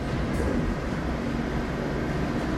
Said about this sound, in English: It's the garbage truck, honey. It's the damn garbage truck.